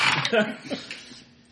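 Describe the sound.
Dice tumble and clatter across a tabletop in a quick burst of sharp clicks that thin out and fade, with voices murmuring underneath.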